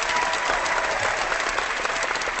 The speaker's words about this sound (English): Oh, wait, we actually can do applause, can't we? Where was that app? Oh. I got it.